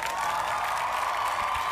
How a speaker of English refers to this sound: Wow, big cheer. Big cheer for Chaisson. They like 45. Big cheer for the bunny hop.